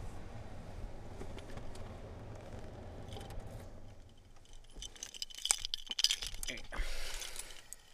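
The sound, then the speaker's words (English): A low car engine hum idles, then cuts out as the car is turned off and a bunch of car keys jangles and clinks in a few quick metallic bursts. “I can probably turn the car off now.”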